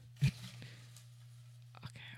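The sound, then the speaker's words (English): Soft papery rustling and crinkling as folded paper slips are stirred by hand in a small Christmas Tupperware container, with a sharp crunch near the start and scattered rustles later, all faint over a steady low hum. “Okay, let me mix this around a little bit. ASMR. That's the paper mixing.”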